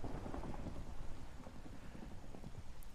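Steady rain hisses continuously, with a low rumbling undertone like thunder rolling beneath it. The downpour stays even and moderately loud throughout, with no voices.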